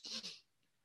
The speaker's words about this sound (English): Hold on a second. I'm about to sneeze.